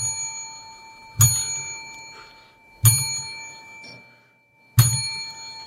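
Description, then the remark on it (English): A small ding bell dings three times at a slow, even pace, each bright ring struck sharply and left to shimmer and fade before the next, rung to announce a star rating given to a match. No voices are heard. “Let me ring my ding bell to tell you how many star rating I gave this match.”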